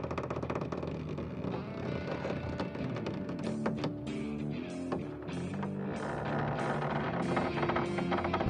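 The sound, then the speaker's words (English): Church roof timbers, weighed down by heavy snowfall piled on the roof, groan and creak in long, low, shifting tones over a steady dense rumble, loud and continuous throughout, with no voices. “Gathered in the glistening snow and huddled cheek to cheek, suddenly the church gives out a daunting groan and creak.”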